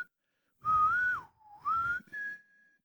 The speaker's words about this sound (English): You just have a little whistle to yourself.